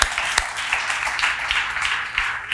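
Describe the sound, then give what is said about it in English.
A church crowd applauds steadily, many hands clapping in a dense, bright patter with a few sharper individual claps standing out, sustained at an even loudness throughout. “So again, let's give us a round of applause for them.”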